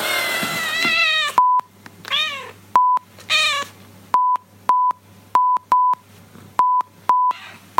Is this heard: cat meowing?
yes